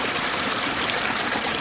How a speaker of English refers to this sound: From the whisper of little streams to the roar of rock-laden rivers full of glacial melt, this is the music of Nepal.